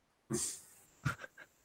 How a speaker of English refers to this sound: Another cat thing.